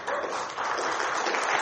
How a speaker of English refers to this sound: You should be applauding God right now.